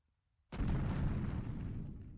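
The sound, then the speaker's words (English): A massive booming footstep of a shadowy humanoid giant some 30 to 40 feet tall lands abruptly after a brief silence, a loud, deep impact whose heavy rumble sustains without fading much until the end. No one speaks. “Massive, huge footsteps.”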